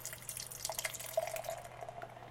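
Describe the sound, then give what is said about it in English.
Beer, a Märzen, pours from a 32-ounce crowler can into a glass, a steady splashing gurgle with fizzy bubbling over a faint low hum, lasting a couple of seconds with no talking. “And the pour?”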